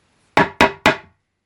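Three loud, sharp knocks on a door in quick succession, each with a hard attack and a brief decaying ring, followed by silence.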